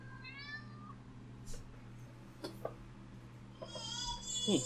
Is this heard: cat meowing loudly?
yes